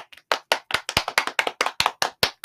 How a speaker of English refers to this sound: Wait a second. Let's do a quick applause.